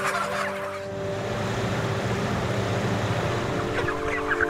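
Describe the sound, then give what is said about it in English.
A dense, continuous chorus of many broiler chickens raised for meat, chicks in their first weeks of life, clucking and chirping at once, layered over a steady low mechanical hum like ventilation fans. “Chicks in their first weeks of life, who still chirp, already have the fully grown bodies of adults.”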